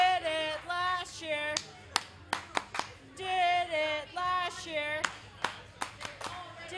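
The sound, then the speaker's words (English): At a party in Portland, sharp, rhythmic claps punctuate a group of voices chanting together, the claps landing in short bursts between sustained, sing-song vocal phrases. “In Portland, chanting and clapping is the same as giving reasons.”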